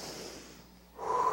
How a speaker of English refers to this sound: And so I just want us to all just right now just take a deep breath. I didn't hear much inhale. Let's do it again. Ready?